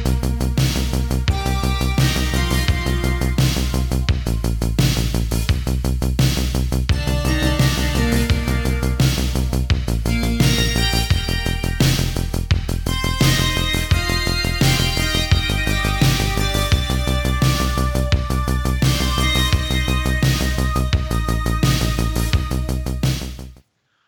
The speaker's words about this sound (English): Hit the music.